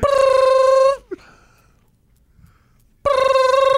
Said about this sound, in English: Nobody's phone rings like that.